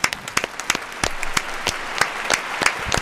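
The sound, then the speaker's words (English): A round of applause as a caller's phone call ends: many hands clapping in a dense, irregular patter, with sharper individual claps popping out over a steady wash. No one speaks. “Honestly, the over-under on how long that call would go before round we had of to applause.”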